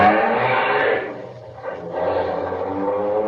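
A car engine roars loudly and steadily, briefly easing off partway through before surging again, with a continuous rumbling drone throughout and no voices.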